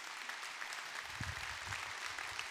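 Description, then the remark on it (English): An audience claps steadily throughout, a dense, even wash of many hands with no pauses, and a few low murmurs of voices underneath. “That would have been really awkward if you didn't clap, so thank you for that.”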